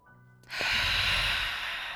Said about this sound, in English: Okay, now we're going to do some deep breathing. We're going to do some deep breathing, some exercise, some whoos.